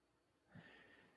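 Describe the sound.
A voice imitates sniffing: a short nasal snort followed by a breathy, hissing inhale lasting about half a second, moderately loud, with no speech.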